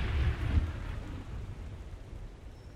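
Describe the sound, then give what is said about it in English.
A thunderstorm at a riverbank where a raft is tied up rumbles with a heavy low roll of thunder at the start, fading into a steady wash of rain and wind. No voices are heard. “And then they tried to get some sleep with the storm all around them.”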